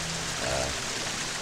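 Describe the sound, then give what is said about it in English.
A waterfall's steady, unbroken roar of rushing water, a dense hiss that fills the whole clip at an even, moderate level with no voices. “So all you guys can hear now is the sound of the waterfall.”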